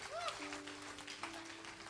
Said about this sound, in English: Give the Lord a super clap offering.